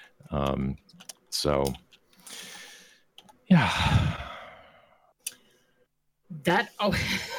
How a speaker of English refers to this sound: Did you get all that? I did. You did hear me typing, right? Yeah, I did.